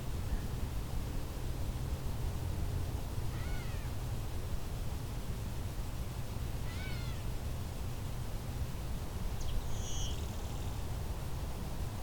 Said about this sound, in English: There's the blue wing. Bee buzz.